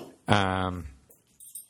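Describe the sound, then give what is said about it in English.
An upset dog lets out a single drawn-out whimpering whine, fairly loud for about half a second, followed by a few faint clinks and quiet shuffling. “sorry, the dog is upset.”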